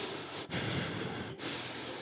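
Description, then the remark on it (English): Loud nasal breathing, a steady airy, hissing rush of air through the nose broken by two brief pauses between breaths, with no talking. “Like my Garrison Keillor nose hair breathe?”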